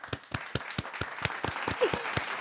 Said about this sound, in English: Everyone, let's give a round of applause.